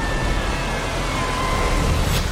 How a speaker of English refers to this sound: This is Delta Launch Control. Go for launch. Three, two, one. Engine start and liftoff.